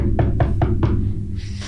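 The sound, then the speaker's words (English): Four evenly spaced knocks rap on the door of a train car, crisp, over a steady low rumble like a moving train carriage. “you are woken up by a... On the door of your train car.”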